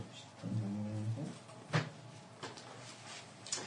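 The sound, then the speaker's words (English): A cat meows once in a drawn-out, wavering tone, followed by a few short clicks and thumps, with no one speaking. “Sounds like the cat.”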